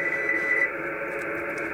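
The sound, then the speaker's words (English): Continuous hissing HF radio static fills the whole moment at steady loudness, with a faint Morse code tone riding through the noise at the start before fading out. No voices. “There's a lot of static and noise that you're going to run into with HF.”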